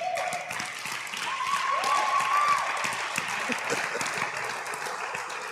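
An audience claps together in steady, continuous applause, many hands blending into a dense patter that holds for several seconds, with faint voices and a brief whoop rising over it.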